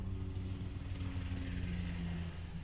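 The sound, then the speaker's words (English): A steady, droning engine rumble of an airplane passing overhead, with low humming tones and a broad wash of noise that holds constant throughout, without any voices. “The plane?”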